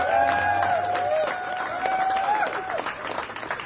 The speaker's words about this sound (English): So a round of applause for all the delegates who are here.